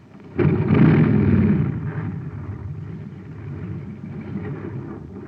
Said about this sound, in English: A jet cycle has just pulled into a filling station to get its tank filled. The man has it filled with ordinary fuel. Listen.